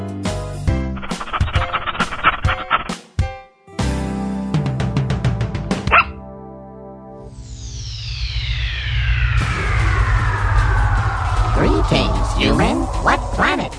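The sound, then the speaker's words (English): Short, punchy dog barks come in quick bursts amid a loud, busy string of sound effects, then a long descending whistle-like slide rings out over a low, steady drone. “Sit. Stay. It's a doggy dog world.”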